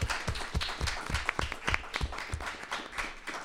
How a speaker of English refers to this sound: Round of applause for everyone who did today. Thank you.